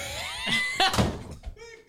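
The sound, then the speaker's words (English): A door swings shut with a single dull thunk near the middle, set among brief vocal sounds and tonal murmurs before and after it. “Close the door.”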